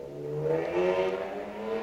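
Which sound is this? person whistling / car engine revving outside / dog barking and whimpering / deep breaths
car engine revving outside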